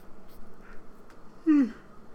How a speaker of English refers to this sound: sorry about that. It's very late for me and I'm very tired. That's probably my second yawn already.